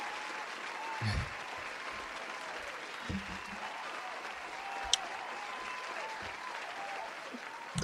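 Sustained, dense talk-show audience applause fills the whole stretch, a steady roar of many hands clapping at even loudness with a few sharper claps poking out, no voices on top.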